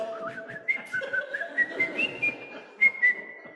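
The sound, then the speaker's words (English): A person whistles a bouncy, marching tune with clear, bright notes in a steady rhythm, alone with no talking. “So sang and whistled the seven dwarves in the Walt Disney movie classic Snow White and the Seven Dwarves.”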